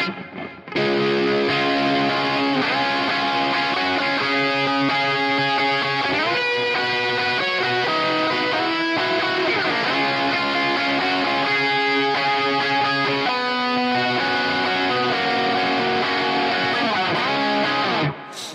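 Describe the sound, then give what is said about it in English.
A heavily distorted electric guitar, played through a Marshall amp capture on a Quad Cortex, plays a loud, continuous metal riff with thick, buzzing harmonics, sustained chords and quick note changes, with no voices over it. “Quad Cortex Marshall Capture”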